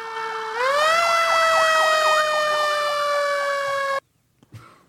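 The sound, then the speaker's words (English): A loud fire truck siren blares steadily, its pitch rising and holding in a wailing tone with a fast warbling undertone, then cuts off abruptly, leaving faint background noise. “Truck 911!”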